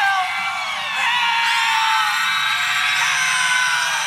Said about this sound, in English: screamed bloody murder.